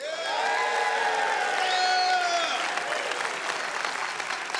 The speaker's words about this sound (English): And what I want you to do is clap and cheer and scream and be all excited. It's time to take the offering.